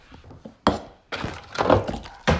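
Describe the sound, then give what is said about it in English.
A sharp thunk as yogurt is dropped, followed by a loud rattling clatter as a couple of juice containers are knocked over, then one more heavy knock at the end. No one speaks. “And I dropped some yogurt. And that knocked over a couple of juices, too.”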